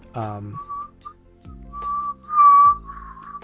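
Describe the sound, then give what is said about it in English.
Someone whistles a short, halting attempt at the whistled theme from the 1968 film Twisted Nerve, known from Kill Bill, a few clear sustained notes rising toward the end, mixed with low voiced hums or sung tones between the notes. “If you've ever seen Kill Bill, you're familiar with the whistle, the doo-doo-doo-doo-doo.”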